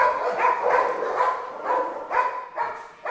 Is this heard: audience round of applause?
no